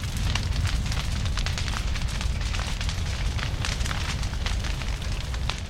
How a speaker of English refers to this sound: This is a wildfire in Yellowstone National Park. It started when a bolt of lightning struck a group of trees. In the cool, humid air of the early morning, the fire is relatively tame.